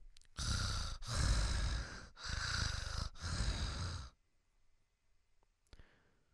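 A man breathes heavily right into the microphone, four loud, rough breaths in a steady rhythm, followed by near silence with a faint click.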